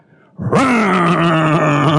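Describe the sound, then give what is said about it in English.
A man imitates with his voice a primed chainsaw engine being started: after a brief quiet moment, a loud buzzy growl kicks in, rises in pitch, then holds as a steady rough drone. “We've been given a working chainsaw in this metaphor, and some of us are trying to cut wood without even running the engine.”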